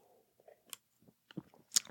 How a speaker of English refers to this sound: So I'm going to have a sip of beer, and I'm going to give a shout out to Bozeman Brewing Company.